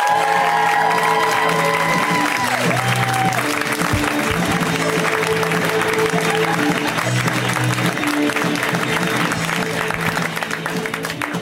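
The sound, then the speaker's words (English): Loud, sustained applause from a large crowd at the comedy show Put Your Hands Together, welcoming comic Amanda Seals, with cheers and whoops mixed in, a steady dense clapping wash that holds for the whole stretch with a brief held musical tone early on. “We give them a huge round of applause and welcome to this show.”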